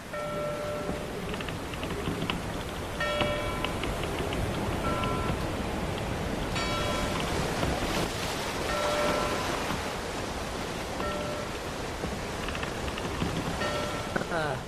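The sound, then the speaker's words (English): A ship's bell rings out about six times at a slow, steady pace, each clear metallic strike ringing on, over a constant hissing wash like surf or rain, signalling that the Argosy has pulled into port bringing mail. “That bell means that the Argosy has pulled into port, bringing mail from faraway lands.”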